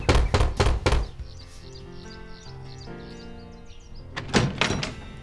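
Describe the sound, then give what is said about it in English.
Several sharp knocks in quick succession on the wooden door of Tante Odette's house, made by a stranger, then a pause with faint chirping birds and ambient tones, followed by another pair of knocks near the end. “He stopped at Tante Odette's house and knocked.”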